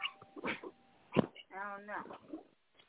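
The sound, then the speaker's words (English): A dog lets out a short, drawn-out whining noise, surrounded by brief bursts of other sounds and a voice. “This motherfucking dog, yo.”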